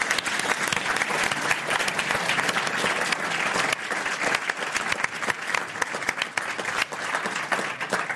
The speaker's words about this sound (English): Round of applause.